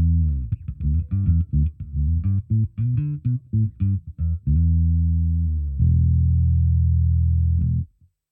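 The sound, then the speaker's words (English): Electric bass on the neck pickup with the bridge pickup and the tone control rolled off completely, giving a dark, muffled tone, playing a quick run of plucked notes, then two long sustained low notes that ring before cutting off. No one speaks. “So this is neck pickup with tone off.”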